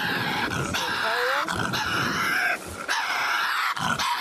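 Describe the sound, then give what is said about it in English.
Loud, raspy Tasmanian devil screams in long, harsh bursts, separated by brief breaks, with a shrill, grating, growling edge throughout and no talking. Tasmanian devils weigh 10 to 30 pounds, about the size of a small dog. “And on top of that, they have a loud and disturbing scream that I have to play for you fellas.”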